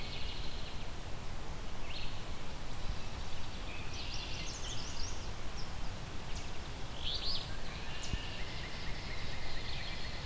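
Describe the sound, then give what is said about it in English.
Short, buzzy two-part 'free beer' phrases of an alder flycatcher repeat a few times over a steady hiss of background noise, with other faint chirps mixed in. No one speaks. “Here we go, we got an alder flycatcher. That's that free beer type song.”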